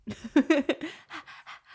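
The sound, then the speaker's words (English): Someone vocally imitates the beat and breathing of a wordless song: a few short voiced grunts, then about five quick, breathy huffs in a steady rhythm, moderately loud with no spoken words. “There's no words to it. It's literally just a beat and breathing.”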